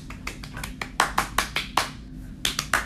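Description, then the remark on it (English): Hands clap in a quick, steady run of sharp, crisp smacks, a handful louder than the rest, then a short pause before a few more claps resume over a low background hum. “I was gonna say, are you gonna clap with me or not?”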